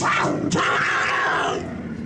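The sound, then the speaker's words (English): A puma in an elevator lets out a loud, rasping growl that rumbles steadily for about two seconds, with a brief sharper snarl near the start and no one speaking over it. “that we're in an elevator with a puma?”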